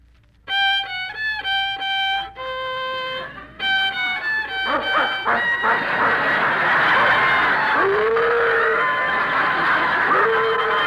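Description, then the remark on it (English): A dog in a hotel lets out a run of high, drawn-out howls and yips, fairly loud, then keeps barking and wailing over a rising, noisy commotion. “There's another violinist in this hotel. That's the dog.”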